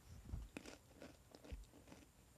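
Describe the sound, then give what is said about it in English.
Close-up munching and crunching right against the microphone, a few sharp bites with wet chewing in between, fairly loud and intimate with no talking. “I said say something, not munch something. Stop munching. Stop munching on the microphone.”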